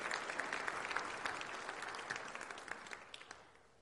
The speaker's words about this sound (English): Beautiful. Can we give the choir another round of applause, please? They did such a good job. Thank you.